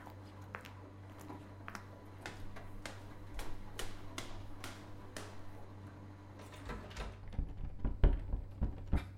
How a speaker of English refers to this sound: Bloody door's jammed! Give it a good yank! It won't budge! It's locked!